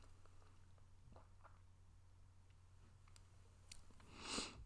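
A quiet sip of coffee: a brief airy slurp near the end, preceded by faint small clicks and soft handling noises over a low hum, with no talking.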